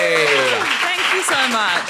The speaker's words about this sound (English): I've never been clapped at a dinner table.